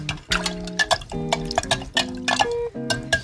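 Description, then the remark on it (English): Strawberry simple syrup is stirred into a fruit-filled sangria pitcher: liquid sloshes and swirls as a spoon stirs, with repeated light clinks against glass and a steady wet churning, fairly loud and rhythmic, no voices. “All right, so we've got our strawberry simple syrup, and we're going to stir that up.”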